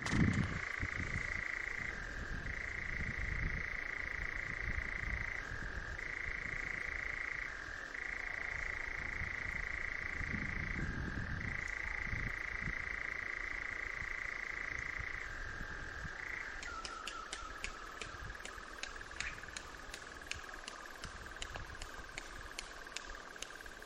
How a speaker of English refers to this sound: He writes he was lucky enough to record a nightjar, including its wing claps, in Northumberland this June. And he sent the recording in and hopes we enjoy it.